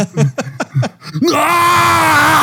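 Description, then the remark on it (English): A few quick vocal bursts lead into a long, exaggerated roaring yawn, loud, held steadily at full volume for over a second until the end. “Why are you yelling? I'm not yelling. I'm yawning.”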